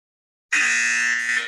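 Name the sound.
game show buzzer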